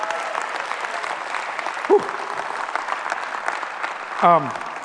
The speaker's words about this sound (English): Give Jesus one more hand clap.